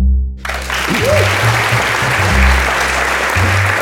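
After a brief hush, an audience at a live recording event breaks into a loud, sustained round of applause, dense steady clapping that holds to the end, with a faint voice and low hum beneath it.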